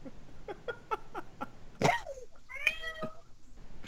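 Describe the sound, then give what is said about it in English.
A cat gives a quick run of five short chirping mews, then a harsher cry and a longer, wavering meow, with no one talking. “Maybe, I agree with the cat.”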